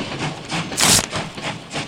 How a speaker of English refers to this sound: I can hear a steam engine pulling in again to the podcast.